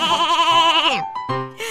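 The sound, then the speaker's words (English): A voice imitates a sheep, a person playing a sheep character, letting out a wavering, vibrato-laden bleat that trails off after a second, followed by a shorter second bleat, loud. “My name is Cheryl the Sheep.”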